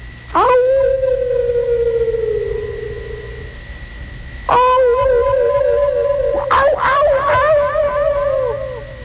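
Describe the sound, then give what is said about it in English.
Long, echoing howls of unfriendly wild animals, made with a partial echo chamber to suggest a vast primal wilderness: one sustained wail slowly fading, then a second rising howl joined by several overlapping yelping howls that swoop up and waver, loud throughout with no speech. “And it is the echoing sound of unfriendly animals.”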